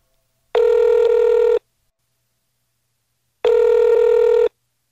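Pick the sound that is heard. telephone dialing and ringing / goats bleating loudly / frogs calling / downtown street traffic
telephone dialing and ringing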